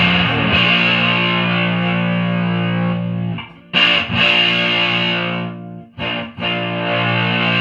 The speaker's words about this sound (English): The one thing I don't like about the Boss is that they don't clean up. They don't clean up good. They just get muddy. Yeah. I mean, it's still a really usable fuzz, though.